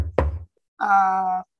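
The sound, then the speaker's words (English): A single dull knock of knuckles rapping on wood, with a low thud to it, followed shortly by a brief sustained voiced sound from someone. “PC has now been ranked 6 straight weeks, knock on wood.”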